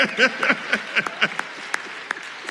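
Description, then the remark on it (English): Audience applause in a church as the women of Delta Sigma Theta Sorority stand, with voices whooping and calling over the clapping at first, then thinning to a few scattered, sharp claps by the end. “We appreciate your applause.”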